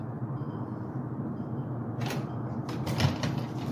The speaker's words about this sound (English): He just knocked on his door. Here it is.